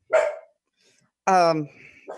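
A dog barks twice, loud and sharp, with a short pause between the first bark and a longer, drawn-out second one, followed by a faint trailing sound.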